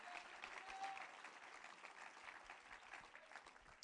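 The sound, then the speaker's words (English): An audience claps their hands to give the Lord praise during an evening service, a dense, steady wash of applause lasting several seconds at a fairly even, moderate loudness with no talking over it. “Can we clap our hands and give the Lord some praise here this evening?”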